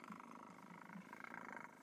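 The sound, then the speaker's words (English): A cat named Nippers purrs steadily right up against the microphone, a soft continuous rumble that ends abruptly with a sudden loud bump on the mic. “Nippers, get off my microphone.”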